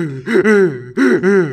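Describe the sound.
An adult voice imitates a child's exaggerated gasping cry: two loud, voiced sob-gasps in quick succession, each with a wavering pitch, with no speech.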